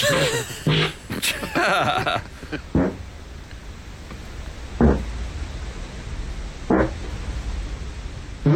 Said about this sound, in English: Let's end one more time with the man farting in his sleep.